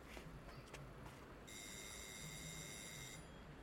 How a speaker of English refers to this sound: I think he said it had a red door. I'll ring the doorbell.